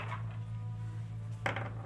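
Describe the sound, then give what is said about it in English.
Dice clatter briefly across a hard table surface near the end, a short burst of small hard knocks over a steady low background hum, with no one speaking. “Roll your die. Roll it. There we go.”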